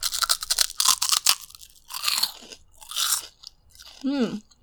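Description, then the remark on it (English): Loud crunching as someone bites and chews a crispy, original-flavor snack, a quick flurry of crackling bites followed by a few slower chews and a brief voiced murmur at the end. “It's super crunchy. Not in like a hard crunchy, but almost like in a crispy way.”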